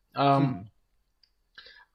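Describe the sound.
A man clears his throat with a short, voiced rasp up close, followed by a few soft mouth clicks and faint breathy noises.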